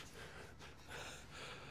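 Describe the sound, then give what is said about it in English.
A male dog snorts and breathes heavily while begging for a piece of food, a few quick airy puffs and sniffs running together over a couple of seconds, fairly quiet, with no one talking. “I could feel breathing down my neck just asking for a piece.”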